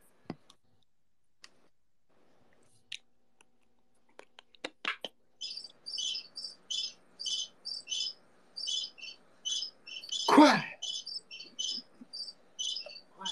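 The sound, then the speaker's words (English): Crickets chirp in a steady, repeating pulse of high, shrill trills after a few scattered clicks, interrupted once by a brief loud burst, with no talking. “That's crickets.”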